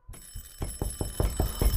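A front doorbell rings continuously, an electric bell rattling in rapid, even bursts at a steady rhythm, fairly loud and with no voices over it.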